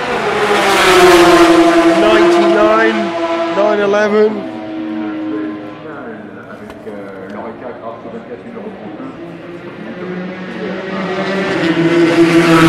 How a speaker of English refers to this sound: There goes the Team Midland car.